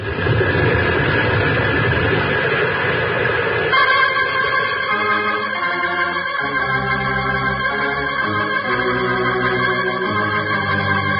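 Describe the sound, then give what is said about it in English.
An avalanche as the side of a mountain comes down, blocking an entrance: a dense, roaring rumble of tumbling rock and snow for about four seconds, then fading under sustained, steady musical tones that carry through to the end. “Avalanche. Side of the mountain's coming down.”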